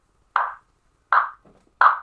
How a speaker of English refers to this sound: So I'm going to clap my hands to keep the beat, because it doesn't have a sound.